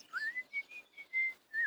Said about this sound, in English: Is that the mating call? No, that's a whistle. A whistling chicken? No, a whistling man. A whistling farmer man!